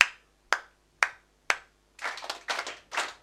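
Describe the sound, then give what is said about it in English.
Four crisp, evenly spaced single claps, then a group copies the pattern with ragged, smeared claps that land slightly out of time with one another. “Now, we've got a couple of people clapping out of phase.”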